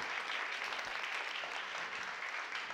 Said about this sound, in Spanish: Me gusta mucho cómo bajan los aplausos.